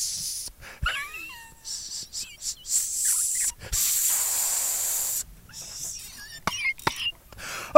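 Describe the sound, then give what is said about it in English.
A voice imitates a snake with a string of long, sharp hissing S sounds, some drawn out for over a second, broken by short gaps and faint squeaky vocal bits, fairly loud. “I'll fucking make S sounds all day.”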